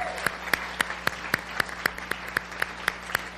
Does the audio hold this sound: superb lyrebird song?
no